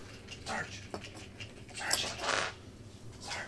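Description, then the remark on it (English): A dog whimpers in a few short, high whines spread across a few seconds, with some faint background murmur. “Hey, dog.”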